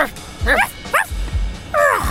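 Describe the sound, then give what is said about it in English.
Several sharp dog barks and yips come in quick, uneven bursts, loud, with brief gaps between them, like an excited dog or two barking in a commotion. “saw the commotion. So much barking.”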